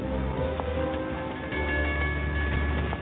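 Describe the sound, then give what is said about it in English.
A train rolls steadily along the rails, a continuous low rumble with a faint high whine and scattered light clicks, even throughout, with no voices. “There were many trains to take the name Orient Express, but only one. In space.”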